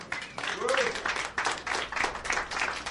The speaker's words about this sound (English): You've got a good hand clap.